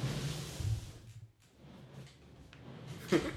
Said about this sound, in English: I just watched you roll your chair back to shut your door.